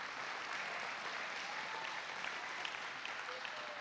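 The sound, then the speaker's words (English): Steady applause from a large church audience, a dense wash of many hands clapping continuously at moderate volume, with no one speaking over it. “Come on, you can clap for that. What kind of clap was that?”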